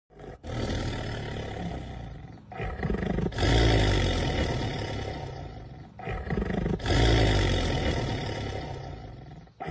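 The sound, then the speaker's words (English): A black panther lets out deep, rumbling roars, several long loud bellows in a row with brief gaps between them, powerful, with no one talking. “That's definitely a roar. Yeah. So Black Panthers, not purrers.”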